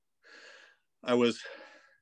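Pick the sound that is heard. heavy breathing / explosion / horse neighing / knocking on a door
heavy breathing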